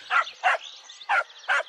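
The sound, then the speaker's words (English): A lost, neglected-looking dog barks four times in two quick pairs, each bark short and sharp, clear against a quiet background with no talking. “I think this dog is lost.”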